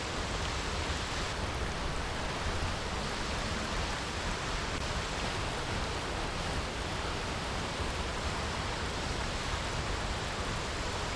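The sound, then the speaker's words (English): Water in a stream rushes steadily and without pause, a dense, even hiss that stays constant from start to finish. No one speaks. “It just keeps on flowing without stopping.”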